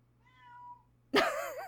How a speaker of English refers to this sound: Meowing.